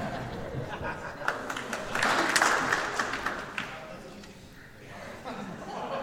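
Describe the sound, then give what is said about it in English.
A crowd at a Christmas gathering claps along in a steady rhythm, the sharp claps swelling in the middle before thinning out, with scattered laughter and murmuring voices underneath. “We're supposed to clap very rhythmically now.”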